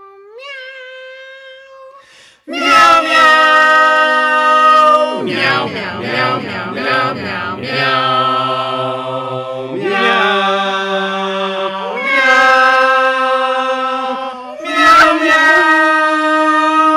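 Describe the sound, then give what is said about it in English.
Cat meows from a cat choir arranged into a musical track, a piece from 2001: A Space Odyssey, with sustained pitched notes gliding over a steady low bass line. It is loud and continuous after a brief, quieter opening. “Meow, that's what I call music. Let's hear a track from it.”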